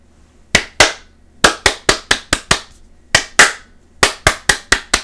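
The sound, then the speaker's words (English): Crisp hand claps in a repeating rhythm: two slower claps followed by a quick run of six, then the same pattern again, with no talking. “Clapping makes you feel good. You ever notice that? Go ahead, try it. Try it with me.”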